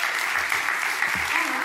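A crowd applauds steadily, many hands clapping in a dense, continuous patter at moderate loudness, with a faint murmur of voices underneath.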